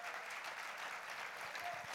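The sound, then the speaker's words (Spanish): Thin, scattered clapping from an audience, a steady patter of hands at low volume that sounds half-hearted, with faint crowd murmur beneath and no one speaking. “Oh, ese aplauso está flojo, por favor.”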